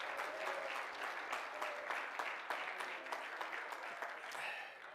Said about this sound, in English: If you believe that this morning, clap your hands. Praise God.